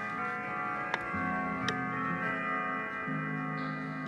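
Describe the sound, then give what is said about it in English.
Clocks ticking, a handful of sharp, distinct ticks spaced roughly a second apart over a steady low hum, with no one speaking. “What are we gonna do about the clocks?”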